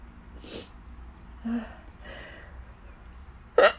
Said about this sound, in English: I'm going to sneeze, I think.